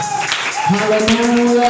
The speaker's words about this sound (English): If you are excited to be in the presence of God tonight, just give the Lord a powerful clap.